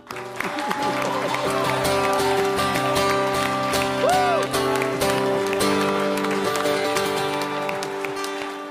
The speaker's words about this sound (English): Clapping in church. If you're going to applaud, we're applauding for the Lord, not just for the band, right? Amen. And if you're applauding for the Lord, you can do a little better than that.